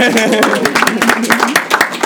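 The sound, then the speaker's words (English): An audience claps in scattered, irregular bursts, the sharp claps loud and uneven while voices murmur and talk underneath throughout. “I want to clap.”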